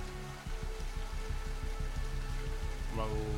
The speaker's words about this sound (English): the rain is coming down pretty hard, so it is a little hard to see.